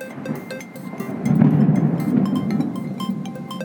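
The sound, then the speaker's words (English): A low, rolling rumble of thunder builds after about a second, swells loud and steady, then slowly eases off without fully fading. No one speaks. “Yeah, I think the thunder gives a lot of emphasis on that, so I'll repeat.”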